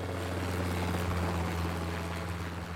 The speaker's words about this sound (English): It's so luxury, in fact, that arriving by helicopter is not unusual, which brings us to the best way to spend money fast.